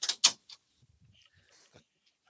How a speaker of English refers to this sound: And hold on, my puppies are communicating. I'm going to close the door and they're going to stay out.